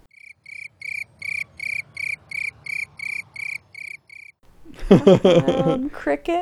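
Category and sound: insect, cricket chirping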